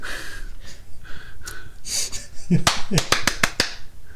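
A quick rhythmic run of about six sharp, crisp hand claps, loud and snappy, following a stretch of breathy vocal sounds and soft murmuring.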